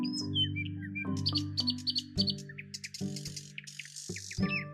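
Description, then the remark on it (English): Quick, high bird chirps and trills repeat throughout, some in rapid bursts, over a low, steady musical drone that shifts pitch every second or so. No one speaks. “He asked some birds if they knew where the penguin came from.”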